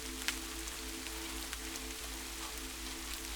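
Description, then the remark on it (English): Steady rain patters on a hard surface, a dense, continuous hiss dotted with sharper individual drops, with a low constant hum underneath. Fairly quiet and even throughout, no voices. “The sound echoes memories from deep within you. You realize the rain has been a consistent companion of yours since childhood.”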